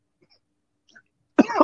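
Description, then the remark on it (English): After a stretch of near silence with a few faint rustles, one loud, harsh cough bursts out at the very end. No one speaks. “I hope that is a weed cough and not a Rona cough.”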